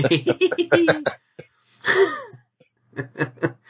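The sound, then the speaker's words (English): A single harsh, breathy cough bursts out in a short pause, fairly loud, with people talking just before and after it. “I've been holding that cough in until you start.”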